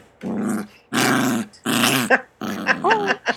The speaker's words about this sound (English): I think a chihuahua growling is about the funniest sound in the world.